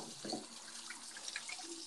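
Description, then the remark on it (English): Water pours steadily from a sink faucet, a continuous hissing splash with a few brief clinks and drips, loud, with no voices. “Can you hear the sink?”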